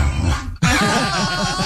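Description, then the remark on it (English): A dog vocalizes in a rapid run of rising-and-falling whiny yowls, loud and continuous, starting abruptly after a brief burst of other noise, in a video of a man with his dog. “That's a video that's going viral on TikTok. With the cutest guy, or the cutest guy's relationship with his dog.”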